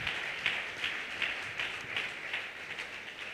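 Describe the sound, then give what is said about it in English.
An audience claps for Jesus together in a steady, rhythmic beat, many hands sounding at once with regular bright pulses roughly every half second, with no voices over it. “Clap for Jesus.”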